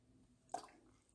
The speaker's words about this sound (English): Got to drink a little water.